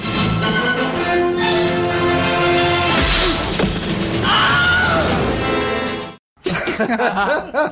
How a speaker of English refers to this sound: also gave us the Wilhelm scream. Here it is. Here it features in Batman Returns.